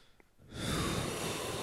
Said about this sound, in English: Yeah, they're sloshing, and the mucus is gurgling.